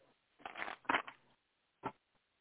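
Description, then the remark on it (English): A deck of cards is shuffled: a rough, papery riffle of about a second, then a brief pause and one short snap as the cards settle. No one speaks. “So I'm going to go ahead and shuffle, my dear, and then let's see what they want to say first, and then I might start to drill down, like I said, with some questions.”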